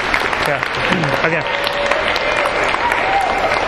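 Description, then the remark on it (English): A class audience breaks into a steady round of applause for the people at the back, dense clapping holding at an even level throughout, with a few voices calling out beneath it. “Hey, let's give a round of applause to those guys in the back.”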